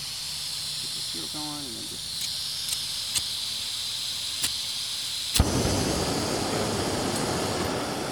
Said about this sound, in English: Then, so you don't need a lighter, got this thing. Okay, so it looks like a little key almost. Yeah, and it's just a fire starter. It's just a little... like a metal and flint kind of thing?